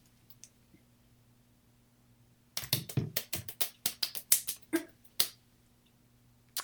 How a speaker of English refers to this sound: Polite applause. It's Nicole Kidman clap. The heck is this? Well, originally it was a golf clap, but that wasn't loud enough, so I added three fingers